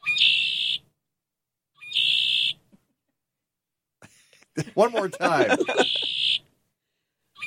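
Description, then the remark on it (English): A red-winged blackbird's buzzy, trilling call repeats three times with short pauses, loud, and a person briefly speaks over the last call. “And that is a red-winged blackbird, I assume, because it looks like a red-winged blackbird.”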